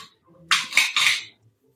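A short burst of dice clattering together as they're put away, three quick rattling surges of hard little clicks lasting under a second, with no talking.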